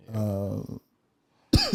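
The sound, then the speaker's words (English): A person coughs, a rough voiced hack lasting under a second, followed by a brief silence and then another sharp burst of vocal noise. “Bruh, this nigga just coughed.”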